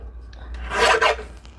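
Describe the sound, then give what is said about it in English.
Thin paper being trimmed, heard as a brief papery rasp made of two quick scraping strokes that swell and fade within about half a second, with faint rustles before and after and no voices. The paper is nearly as thin as onion paper and is being trimmed because it is too wide. “It's not exactly like an onion paper, but it's approaching the thickness of a little too wide. Do a trim job.”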